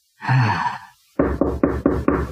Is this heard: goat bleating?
no